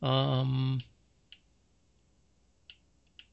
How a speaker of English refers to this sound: Can you hear me typing? Yeah, I can.